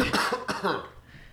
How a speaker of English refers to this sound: I apologize for the amount of coughing and sniffling on this episode.